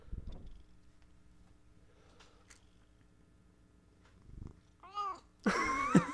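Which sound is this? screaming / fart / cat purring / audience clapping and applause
cat purring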